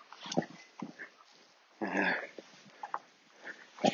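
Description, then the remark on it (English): Small sheepdog-type dogs, like miniature Dulux dogs, being walked by a woman, snuffle and grunt in short, irregular bursts, with one longer, louder snorting whine partway through and quieter sniffs scattered around it. “Got this mini Dulux dogs there, nice lady.”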